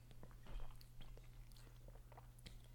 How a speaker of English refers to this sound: You really swallowed that. You could hear that shit? Yeah, I heard it go all the way down. That's wild. I could hear it in your tummy right now.